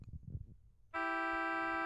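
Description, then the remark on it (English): A car horn blares outside from a ride waiting to pick someone up, one long, steady, loud honk with a bright buzzing tone, starting abruptly after a moment of low murmuring and holding to the end. “Nobody beeps anymore.”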